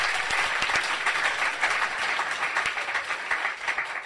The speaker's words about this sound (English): Okay, ladies and gentlemen, let's have a massive round of applause for the wonderful Simon Glendinning!